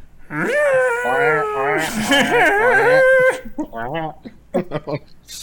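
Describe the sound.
A voice imitates a happy penguin with a long, wavering, nasal squawk for about three seconds, followed by shorter bursts of chattering vocal noises.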